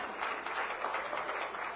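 An audience applauds, many hands clapping into a dense, steady patter that holds an even, moderate loudness for the whole stretch, with no voices rising above it.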